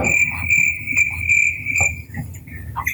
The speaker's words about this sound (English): Yeah, do you know what we should have? Crickets right now, because that's how it was.